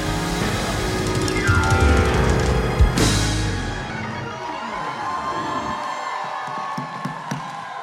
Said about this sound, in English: Put your hands together one more time and clap them for the Lord in this place.